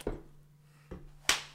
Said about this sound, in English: Halloween clap. We did it.